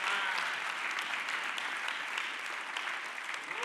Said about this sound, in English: Come on, somebody. Clap your hands this morning.